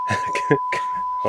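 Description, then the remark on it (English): A steady, unbroken censor bleep tone runs through the whole moment, flat and constant, while a voice speaks in short bursts over it. “We got to get the beep out now.”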